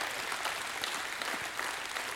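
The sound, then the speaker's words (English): A crowd gives a hand clap of praise, clapping together in a dense, steady wash of applause, many hands blending into a continuous bright patter that holds at a fairly even level throughout, with no voices. “Give yourself a hand clap of praise.”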